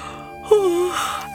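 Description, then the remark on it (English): A person imitates a cow's yawn with a single drawn-out, sliding moan that starts abruptly and falls in pitch before trailing off, fairly loud. “The glum-looking cow yawned.”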